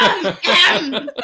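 A person clears their throat: a couple of loud, rough, raspy bursts over about a second, trailing off into softer breathy sounds.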